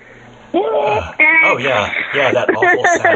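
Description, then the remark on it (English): A voice imitates a dial-up modem connecting, with rising and falling whistly tones and warbling screeches over about three seconds. It sounds thin and band-limited, like it's coming over a phone line. “That awful modem sound that we had back in the 90s.”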